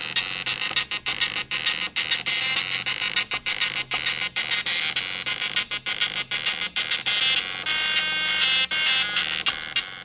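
A harsh, buzzy electronic rendition of a pop song melody, played in choppy bursts with brief gaps, like a tune squeezed out of an old beeping gadget. Loud and steady, with no voices.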